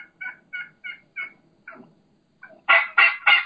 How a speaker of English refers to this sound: And then you can hear that low and slow, ow, ow, ow. That's a hen saying, no, I'm the dominant one. I'm not going to you. You just need to come to me, or I'm the one in charge of this group.